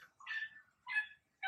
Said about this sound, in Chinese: 哎，怎么会有狗的声音？